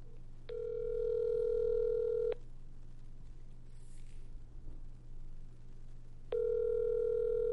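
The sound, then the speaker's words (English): An outgoing phone call to a woman, its ringback tone sounding twice, each a steady electronic buzz lasting about two seconds with a long silent gap between, over a faint low hum. “You hear it ringing?”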